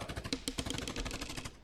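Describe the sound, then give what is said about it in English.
Rapid bursts of gunfire crackle continuously, a dense stream of sharp shots fired in quick succession at a steady, fairly loud level with no talking. “I'm going to give you a +3 because there's gunshots happening and he is in a heightened state of doing something else.”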